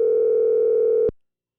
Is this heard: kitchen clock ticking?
no